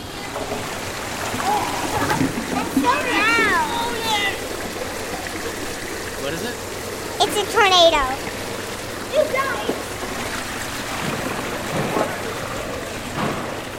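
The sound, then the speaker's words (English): Water runs and splashes steadily at children's museum water tables for exploring dams, fountains and whirlpools, with children's high-pitched voices and brief squeals rising above the flow now and then. “The younger ones found the sandbox, then the water tables for exploring dams, fountains, and whirlpools.”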